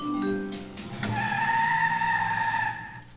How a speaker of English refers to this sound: It sounded like she gunned it. Uh-oh. It did, right? It didn't sound like she hit the brakes.